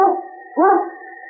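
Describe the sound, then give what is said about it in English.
Yukon Cage, a lead sled dog breaking a trail for Sergeant Preston of the Northwest Mounted Police, howls twice in quick succession, long wavering cries with a rising-then-falling pitch, loud, with no other sounds around them. “It's Yukon Cage, swiftest and strongest lead dog of the Northwest, breaking a trail for Sergeant Preston of the Northwest Mounted Police in his relentless pursuit of lawbreakers.”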